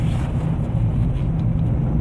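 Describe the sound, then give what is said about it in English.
Steady, deep engine and road rumble from inside a moving car in slightly congested traffic, holding an even level for the whole moment with no voices and no distinct horns or passing vehicles. “I am nearing my halfway point to Chateau Star Sage, and traffic is congesting a slight bit.”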